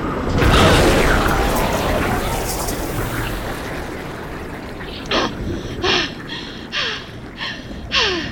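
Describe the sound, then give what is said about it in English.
A heavy submarine outer hatch unseals underwater, about 500 feet above the ocean floor, with a loud rushing surge that slowly fades into a muffled underwater wash, followed by several short, breathy bursts spaced a second or so apart. “Did you open the outer hatch?”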